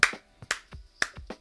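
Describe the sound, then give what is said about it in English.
A few hand claps ring out at a steady, unhurried pace, about three sharp smacks spaced half a second apart, with softer thuds between them and no talking; someone clapping in appreciation of a musical theme just played. “I'm not clapping for mold, just the theme.”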